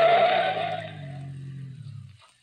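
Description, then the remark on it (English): A car skids as it rounds a turn and cuts off to the side of the road, a harsh burst of tire noise giving way to a low droning rumble that slowly winds down and stops after about two seconds. “I rounded the turn and then cut off to the side of the road.”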